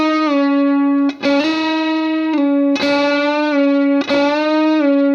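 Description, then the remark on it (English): A distorted electric guitar plays a sustained, buzzy note on the G string that is bent up in pitch and eased back down, picked three times in a steady, loud phrase with no talking. “We're going to repeat the first part that we did, and this time, instead of going up here for the hammer-on, we're going to drop down here to the G string where we started, and we're going to do a bend up and down again.”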